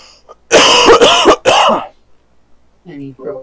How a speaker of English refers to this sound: Yeah, sorry. I was having a little bit of coughing fit